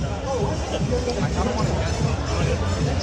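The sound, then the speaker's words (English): Steady crowd hubbub at a street festival on Arthur Avenue in Little Italy in the Bronx. Many overlapping voices chatter at once in a dense, continuous wash of babble with no single speaker standing out, moderately loud. “As you make your way through the crowds, you just feel a sense of community.”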